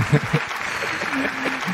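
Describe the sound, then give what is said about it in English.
A short burst of applause sound effect, a steady, dense crackle of many hands clapping at even loudness, with faint voices murmuring underneath. “Let me just go ahead and play the claps for that.”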